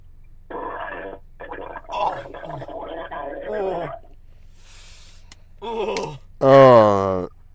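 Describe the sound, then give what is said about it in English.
A person gargling water makes a wet, bubbly gurgle of throat sounds that stops and starts for several seconds, then ends in one loud, drawn-out burp. “It's a water burp.”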